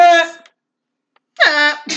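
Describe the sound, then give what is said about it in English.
A voice imitates a bleat with two loud, blaring, horn-like calls separated by a pause of silence, the second rising into a strained, nasal honk before cutting off. “I'm sorry, that sounded like a foghorn.”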